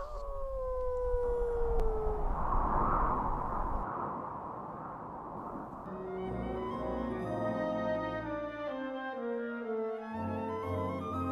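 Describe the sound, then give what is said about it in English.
Several dogs howl together in long, gliding wails over a rough background for the first few seconds, then the howls give way to steady layered tones that continue to the end. “I closed my ears to the howling dogs.”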